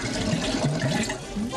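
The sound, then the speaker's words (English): A woman pours a drink from a jug, a continuous splashing gurgle with a faint rising fill tone, lasting under two seconds with no voices. “She's pouring in by the juggler.”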